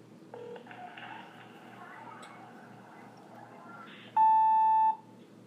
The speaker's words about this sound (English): That was a voicemail. Was it? Mm-hmm. Cause when you hear that beep, that's a voicemail.